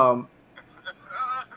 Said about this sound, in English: Ringtone going off. God damn it.